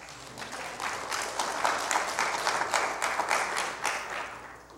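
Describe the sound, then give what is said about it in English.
A church audience breaks into sustained applause as a clap offering to God, many hands clapping in a dense, steady wash that swells slightly and holds for several seconds, with a few faint voices mixed in. “Yeah, you can give God a clap offering there.”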